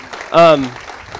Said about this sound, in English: Can we just thank those who've just been a part of this, helping serve, giving, being a part of this? Can we just clap for them and get up for them, because they've worked so hard, honestly.